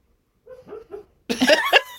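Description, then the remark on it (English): A dog whimpers while having a bad dream: three short, soft, high-pitched whines, then a louder, rougher burst of whining and muffled yelping, with no talking. “That's her dog is having making a bad dream.”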